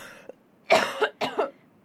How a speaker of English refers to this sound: I haven't been savvy or pushy enough to sort of push through that instead of oh here comes another cough.